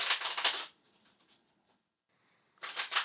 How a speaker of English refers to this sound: go ahead and just take a moment and tune in while I shuffle the cards